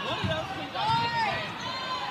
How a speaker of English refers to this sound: No. I think that was our cheering squad down there. May have been.